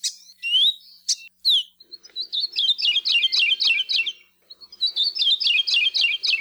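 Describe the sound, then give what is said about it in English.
A Kiwikiu (Maui parrotbill), a stoutly built green and yellow bird, sings alone, opening with a few sharp sweeping whistles, then delivers two rapid trilled runs of repeated downslurred notes, clear, with a brief pause between runs. “These stoutly built green and yellow birds rarely sing, but when they do, it's the best way for biologists to detect them.”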